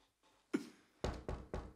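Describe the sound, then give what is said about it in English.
Someone knocks on a door: a single thud, then three sharp raps in a quick, even rhythm. The knocks are fairly quiet, with no voices. “Oh, honey, who's that? Who's at the door?”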